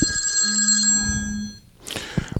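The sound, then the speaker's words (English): A telephone bell rings in one sustained, shrill burst with a steady metallic buzz, then cuts off into a short rustle and a few clunks. “Telephone.”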